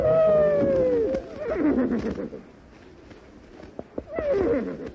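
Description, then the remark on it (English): A horse that has never been ridden whinnies loudly, a long quavering neigh at the start, then a second shorter whinny near the end, with scuffling and a few sharp knocks in between. “Say, boss, I forgot to tell you that horse ain't never been rode before.”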